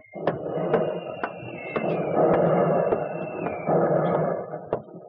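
Repeated sharp booms of heavy artillery shelling, about eight or nine irregular blasts over a continuous low rumbling roar, with a faint whining tone running beneath for much of the time.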